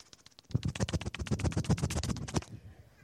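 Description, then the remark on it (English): A voice imitates a Coast Guard helicopter coming in, with a rapid, steady stream of breathy chopping pulses over a low hum, lasting about two seconds and then cutting off. “I can't do a helicopter very well.”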